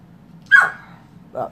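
A dog gives a short, sharp bark followed by a softer, briefer yip a moment later, over a low background hum.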